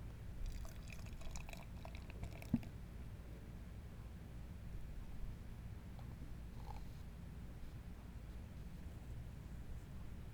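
IPA beer pours steadily into a glass with a soft, continuous gurgle and faint fizz, quiet, with no one speaking.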